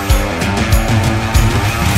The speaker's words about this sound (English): So let's start the engines.